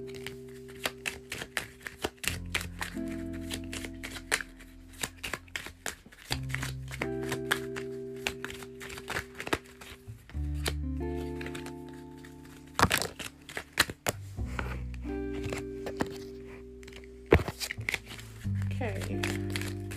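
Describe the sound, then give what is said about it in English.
Cards being shuffled for a fortune-telling card reading, with rapid crisp riffling and snapping bursts that come and go in waves, heard over soft, steady background music with sustained tones. “Okay, so everyone who picked pile three, including me, let's find out our fortune, make a wish, and shuffling cards.”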